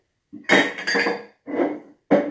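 Dishes clink and clatter as they are stacked away in a kitchen, several busy bursts of clanking crockery with brief pauses between them.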